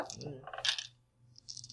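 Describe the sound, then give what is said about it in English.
Dice, including purple dice and a black die, are rolled during a role-playing game, clattering across a hard tabletop in a quick burst of sharp clicks, then settling. A second, lighter rattle follows after a brief pause, fairly quiet. “Ooh, black guy came up neutral.”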